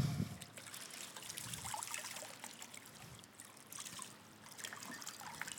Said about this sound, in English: And if we were to continue pouring out and putting bigger and bigger vessels under this chalice, under this cup, there would not be enough container.